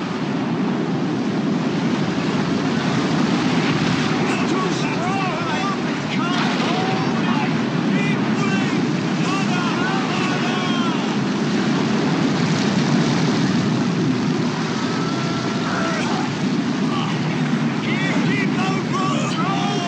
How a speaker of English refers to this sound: All the while, the disciples were fighting for their lives in the midst of a violent storm. May have looked something like this.